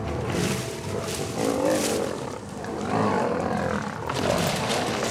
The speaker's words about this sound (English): Those are lions tussling. The sun is setting, the sky is darkening, and three male lions are having a little scuffle nearby.